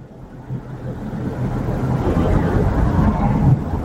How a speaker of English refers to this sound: There's a thunderstorm far away. Lightning can still strike.